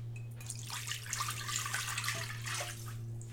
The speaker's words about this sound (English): A cup of vegetable juice and a half a cup of vodka is going in.